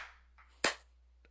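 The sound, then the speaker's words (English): Two sharp, loud hand claps spaced well apart, each a crisp slap with a quick decay, and no voices in between. “Clap again. Clap again. 3, 2, 1.”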